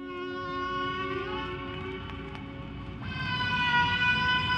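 Slowed-down whale song: a long, steady tonal moan rich in overtones that shifts to a new pitch partway through, growing slightly louder toward the end, with no voices.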